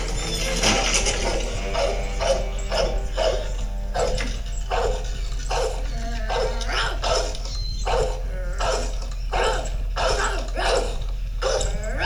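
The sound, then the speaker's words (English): A dog barks over and over in quick, uneven bursts, loud, with rough growling mixed between the barks for the whole stretch. “That dog will rip your face off.”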